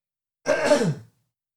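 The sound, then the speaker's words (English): A single short, rough throat clearing, a raspy voiced burst lasting about half a second before quiet returns. “sorry guys, I'm going to clear my throat one more time.”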